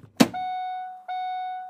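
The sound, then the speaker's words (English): A person gets into a car: the car door shuts with a single solid thunk, followed right away by two long, steady electronic chime tones from the vehicle. No one speaks. “So let's go ahead and grab these keys. We're going to get in the car.”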